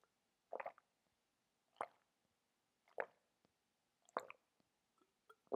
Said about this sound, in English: Okay, speaking of water, I need a water break. One sec.